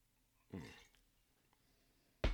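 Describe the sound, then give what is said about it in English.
A brief gurgling splash of Hartman's straight rye whiskey pouring into a glass, lasting under half a second, followed after a quiet pause by a sharp, loud knock. “So let me go ahead and pour it here.”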